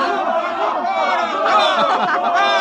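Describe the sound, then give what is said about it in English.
A large crowd cheers and shouts together at a fiesta in a plaza, cheering for a papier-mâché bull running about. Many overlapping voices form a steady, loud roar that swells slightly midway, with no single speaker standing out. “The cheering for the bull.”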